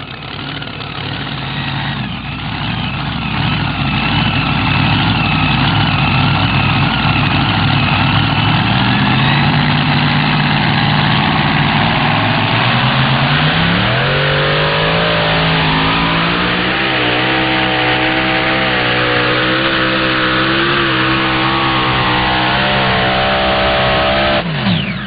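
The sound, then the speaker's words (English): A pair of supercharged (blown) Chrysler Hemi engines on the twin-engine pulling tractor Twisted Whip, from Cat Springs, Texas, roar loudly and continuously at a tractor pull, pitch climbing and wavering as they strain under load, then rising sharply near the end; no voices. “Donald Nelson, legendary puller out of Cat Springs, Texas, been pulling since 1978. Twin Chrysler, blown Hemi, calls it the Twisted Whip.”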